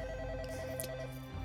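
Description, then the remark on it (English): A phone ringtone rings out steadily for a moment from an unknown caller, a bright repeating electronic tone over a low hum, with a brief brighter chime near the middle and no one speaking. “I mean, I will look at the phone and see if there is any caller ID on it while it's running.”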